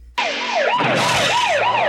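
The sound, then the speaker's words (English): A police car siren wails loudly, sweeping up and down in steady repeated cycles over a broad roar of engine and road noise from a car chase involving a police car and a motorcycle, with no music. No one speaks. “So the audience is hearing the car, the motorcycle sounds, no music.”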